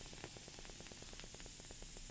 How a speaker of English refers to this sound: It is clunking out of there. It is doing that sweet cascade action, but not as prevalent as you would think, like with a nitro porter or something you get at the bar. Yeah. It's just kind of like fizz, fizz, and it's done.